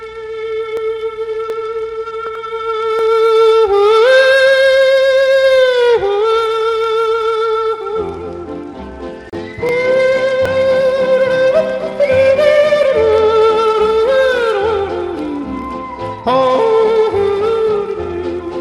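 A country song with a high, sustained yodeling voice holding long, wavering notes, then backed by guitar and band as the melody swoops up and down, loud and clear.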